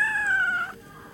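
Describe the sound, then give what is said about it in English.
A single drawn-out cat meow, clear, its tone sliding gently downward before cutting off, followed by quiet background with no talking. “Let's listen to our cat.”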